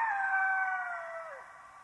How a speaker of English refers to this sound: Anybody know what that is? Coyotes. Yes, some of you are country people. This is good. So when you first hear them, they sound like babies wailing, right? It was so loud that it woke up both of us.